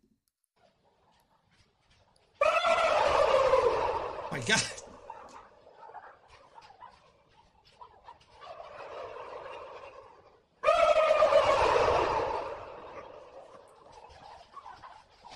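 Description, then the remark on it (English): A turkey gobbles loudly in two rapid, rattling bursts a few seconds apart, with a sharp click between and a person's brief exclamation in the quieter stretch. “Let's listen to what vampire turkey sounds like.”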